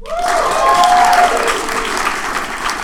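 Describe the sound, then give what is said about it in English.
A room full of people applauds steadily, the dense clapping sustained and fairly loud throughout, with a few cheers and whoops rising above it near the start. “By applause, how many people in the room are 60 or over?”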